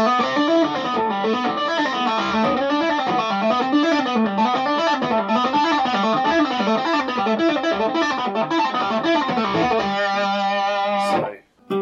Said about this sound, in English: So we were using the 5th, the 7th and the 9th frets of the D and the G string, just literally going up those six notes, coming back down them.